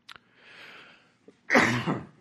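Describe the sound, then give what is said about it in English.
A loud cough bursts out after a brief quiet stretch of faint breathing and a small click, the rough explosive sound lasting about half a second with no talking. “I need to take a little shot of cough syrup here.”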